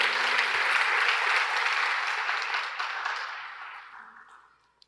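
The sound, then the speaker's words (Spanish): An audience at Numa Church bursts into loud, dense applause for the Lord, many hands clapping together in a steady wash of noise that gradually thins and fades away over about five seconds. “Y vamos a darle un aplauso fuerte a nuestro Señor.”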